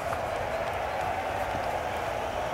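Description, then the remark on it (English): A large outdoor crowd of golf fans at the 16th hole of the Waste Management Phoenix Open cheers and applauds a birdie in a steady, sustained roar that holds at the same level for the whole few seconds, with a dense wash of clapping and shouting voices. “If you do something good, they cheer you.”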